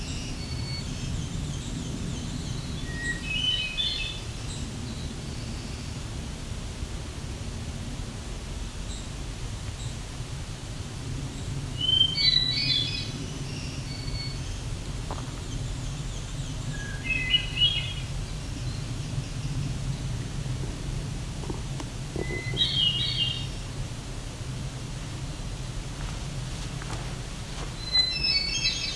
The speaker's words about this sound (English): The distance is a winter wren. There's the winter wren. Chickadee.